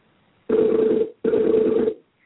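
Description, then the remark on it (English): Two steady, loud electronic ringback tones, each lasting about three-quarters of a second with a short gap between, from an outgoing phone call placed to add someone to a call, waiting to be answered. No voices. “It's ringing. See if he picks up.”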